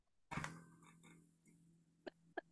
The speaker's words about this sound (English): What that creaking sound is, a little creepy. Sound like that rocking chair. Yeah. A little eerie going on.